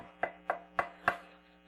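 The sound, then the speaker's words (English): Four firm knocks on a front door in an even, steady rhythm, each a sharp hollow thud with a brief ring, with no voices around them. “We got doorbells, you know, nobody knocks on the door.”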